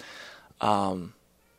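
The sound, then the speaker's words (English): A single drawn-out cat meow, clear, sliding slightly downward in pitch over about half a second, with only faint background noise around it and no talking. “This cat is still going.”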